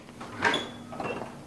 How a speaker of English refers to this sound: Nice creak of the door.